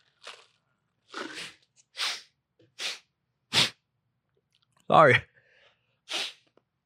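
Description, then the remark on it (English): Quick nasal breaths, about six short hissy sniffs spaced roughly a second apart, with a faint squeaky edge; one brief spoken word breaks in partway through. “am I squeaking a lot? I feel like I'm squeaking out of my nose.”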